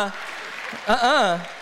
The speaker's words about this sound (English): that's the weakest clap I've ever heard in my life.